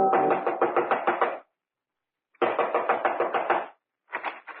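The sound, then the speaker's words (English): Rapid knocking on a house's front door comes in three loud bursts of quick raps, separated by short pauses, with no voices. “Within 15 minutes, I was knocking on his front door.”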